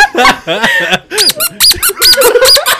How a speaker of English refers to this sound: Open up the door. Why does that doorbell sound so weird?